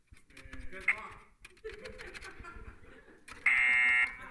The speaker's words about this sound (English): And the nose lights up, right? And there's a buzzer, and the nose lights up, and then of course you're, I don't know, you're disqualified or whatever at that point.